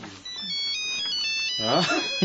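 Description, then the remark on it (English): A mobile phone ringtone plays a steady, high electronic melody throughout, moderately loud, during a meeting; a person begins to speak over it near the end. “I forgot to switch off my own. I'll just take this call and come straight back to you.”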